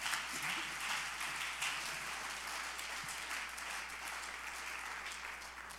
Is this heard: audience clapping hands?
yes